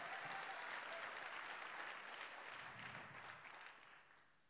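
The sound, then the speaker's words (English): A church audience claps together to bless the Lord in a dense, steady wash of applause, holding strong before slowly fading out toward the end. “Is there anybody that's going to clap their hands with me and bless the Lord?”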